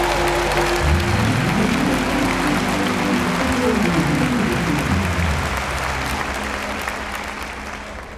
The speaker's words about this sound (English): Come on, give him a clap offering.